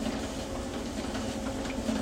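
An office printer at a workplace runs steadily while someone prints, giving off a continuous mechanical whir with a low hum and a fine, busy rattle, fairly loud throughout with no voices.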